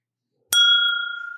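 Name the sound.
glasses clinking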